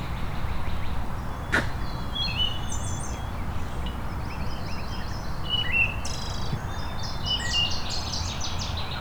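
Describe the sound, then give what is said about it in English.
A water thrush and a red-winged blackbird call outdoors, bright chirps and short trills repeating throughout, over a steady rushing background hiss with no one talking. “There's our water thrush again. And a red-winged blackbird.”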